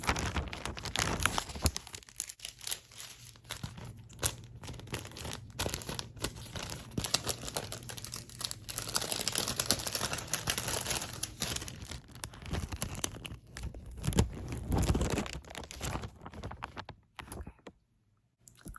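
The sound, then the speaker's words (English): A bag is crinkled and rustled almost nonstop, a dense, crackly rattle of plastic with sharp snaps scattered throughout, fading near the end. No one speaks. “Okay, we're gonna have to change the color of the bag.”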